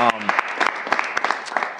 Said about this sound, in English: So, Nah, that's huge, man. That's huge. Clap it up for that.